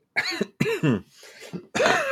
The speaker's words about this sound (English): Pause for cough.